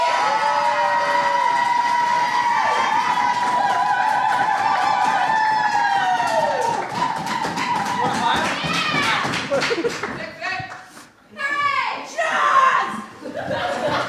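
An audience applauds and cheers for a poet, with dense, loud clapping and high whoops for about ten seconds, then the applause thins into scattered claps and a few shouts.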